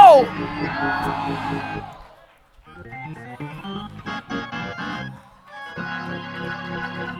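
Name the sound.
audience screaming and shouting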